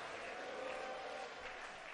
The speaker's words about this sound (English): Somebody clap your hands and shout hallelujah. I didn't hear your voice. I said clap your hands and shout hallelujah.